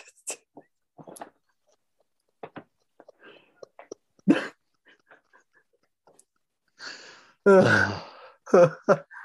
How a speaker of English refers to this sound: Hold on, my dog's throwing up.